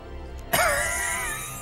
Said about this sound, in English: you hear a voice from the corner of the room, letting out a wheezed cough.